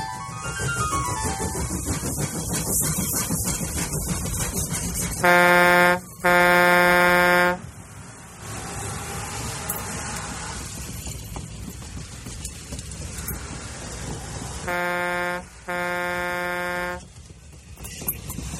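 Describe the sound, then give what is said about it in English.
A passing train's horn sounds in two pairs of loud, steady, brassy blasts, one pair midway and another near the end, over a continuous rumbling background. “Okay, so that train sound you just heard, that's because as I was recording, the train in the brain got derailed.”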